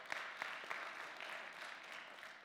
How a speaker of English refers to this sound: I think it is. I think we could even get a good clap going right there, because that's just a good thing.